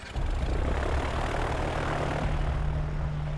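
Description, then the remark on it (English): A single-engine propeller airplane drones steadily at a ranch in Florida, flown erratically and buzzing a tour bus several times, its engine a loud, continuous buzz with a low tonal hum throughout, no voices present. “They arrive the next morning at a ranch, which also has a single-engine airplane.”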